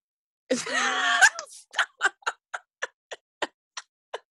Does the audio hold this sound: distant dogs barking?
no